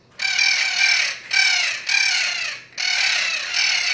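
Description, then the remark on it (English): Loud, harsh bird calls repeat in a steady series of four long, raspy squawks, each separated by a brief pause: the mating call of juvenile Spix's macaws. “Right now, you're hearing the mating call of juvenile spix macaws.”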